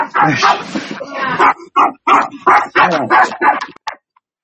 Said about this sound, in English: Well, the dog's chiming in, saying apparently he doesn't. Yeah, the dog's always chiming in.